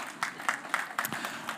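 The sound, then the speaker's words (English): An audience at a Resurrection Sunday service applauds the women briefly, the sharp claps landing in a loose, steady rhythm roughly four times a second at moderate volume, with no voices over them. “Your wife's like, "Yeah, I had to tell you to clap your hands."”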